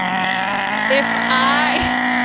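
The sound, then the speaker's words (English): A person mimics a motorboat engine revving with their voice, a steady loud buzzing drone that climbs in pitch a couple of times as if throttling up. “That's a bitch that knows she's going to die and just wants to ride that boat right into the rocks. Hit the throttle.”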